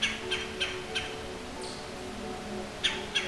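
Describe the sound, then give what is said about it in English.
A red-bellied woodpecker gives a stuttered, guttural call: a quick run of short rough notes, a brief pause, then two more, moderately faint against a quiet outdoor background. “The red-bellied woodpecker's call is a stuttered guttural call, a sound often made while clinging to the trunk of a large deciduous tree.”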